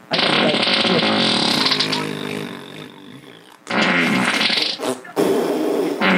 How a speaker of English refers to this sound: And if I get the position, it sounds like a fart.